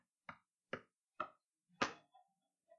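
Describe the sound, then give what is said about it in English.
Knuckles rap on a wooden surface four times at an even, unhurried pace as the superstitious 'knock on wood' gesture, the last knock heaviest, followed by a couple of faint light taps. No one speaks. “Knock on wood. What does this do, by the way?”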